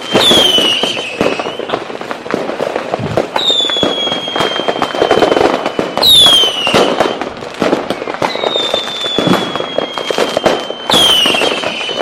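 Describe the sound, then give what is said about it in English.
Fireworks in the bed of a truck go off during a vehicle accident in a dense, continuous barrage of crackles and pops, with shrill whistling rockets shrieking and falling in pitch every few seconds, loud, with no one speaking. “This fireworks going off.”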